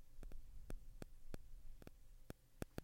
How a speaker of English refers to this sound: Ah, the static keeps coming back.